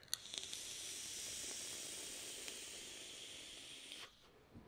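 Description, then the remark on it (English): A pre-primed vape coil head, saturated with liquid that got sucked in, being puffed with a gurgly sound: a steady, sizzling hiss lasting about four seconds, broken by scattered wet crackles and pops, then cutting off abruptly. No one speaks. “It's gurgly. I'm trying to vape through this gurgle.”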